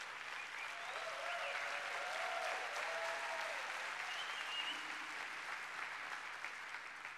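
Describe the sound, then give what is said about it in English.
A crowd applauds the Buddy Break workers who are present, clapping steadily for about seven seconds, a dense, even wash of clapping that stays loud throughout, with faint voices and a brief whoop mixed in underneath. “We applaud all of the workers that are here, a part of Buddy Break.”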